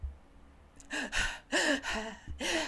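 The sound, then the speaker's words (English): A voice imitates panicked breathing: about five short, sharp gasps in quick, uneven succession, breathy with a slight voiced catch, fairly loud, with no talking. “You know, panic, breathing short.”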